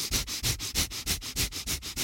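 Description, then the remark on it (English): Rapid, sharp breaths through the nose repeat in a steady, quick rhythm, about five per second, each a short airy burst of hissing noise, with no talking: Wim Hof style breathing with fast, sharp, deep inhales and short, shallow exhales through the nose. “It's like the Wim Hof style breathing would be, for example, you would breathe really fast, sharp, deep inhales, and then short, shallow exhales through the nose for like 60 seconds.”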